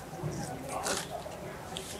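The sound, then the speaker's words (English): Crisp, crackly crunching of someone biting into chicken nuggets, with a louder burst of crunch near the middle and softer chewing noises before and after. “The crunch is just right.”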